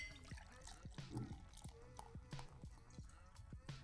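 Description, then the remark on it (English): Beer glugs steadily from a bottle into a glass, with a quick rhythmic series of gurgles and a rising fill sound, fairly clear. “Now, pours out pretty nicely.”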